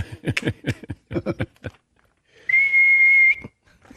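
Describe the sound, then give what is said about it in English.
A single sustained, flat, steady-pitched whistle, used at a baseball game to signal the pitch type, holds for nearly a second, loud and clear, following a stretch of indistinct voices talking. “A video that Garcia put together shows different whistles, two different whistles.”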